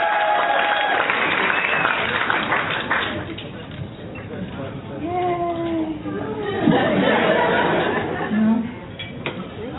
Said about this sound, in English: Round of applause for Liz Miele, everybody. Let her hear it. Let her hear it.